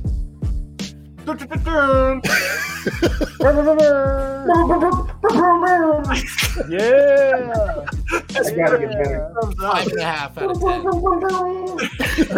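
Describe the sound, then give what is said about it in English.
On the DNVA live show presented by Illegal Beats, a voice imitates an air horn with a run of loud, buzzy, harmonic blasts. Each lasts about half a second to a second, in a rapid repeating rhythm with bending pitch, sustained for about twelve seconds. “let's hear your best air horn.”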